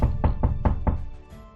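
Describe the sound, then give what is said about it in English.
Five quick, solid knocks on a wooden door in a steady rhythm, fairly loud, followed by a brief quiet tail with no voices. “So open the door.”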